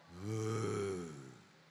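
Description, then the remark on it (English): A voice imitates a man snoring in his sleep: one drawn-out, low, rumbling breath that swells quickly, holds steady, then fades over about a second and a half, fairly loud. “So after honeymoon, now they sleep and the guy forgets himself and he begins to snore.”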